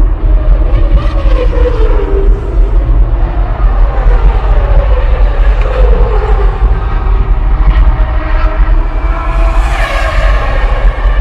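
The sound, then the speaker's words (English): Loud, continuous car engine noise from a video teaser, with a heavy low rumble, engines revving up and down in sweeping pitches as vehicles roar by, with no talking. “You hear all the car sounds, right?”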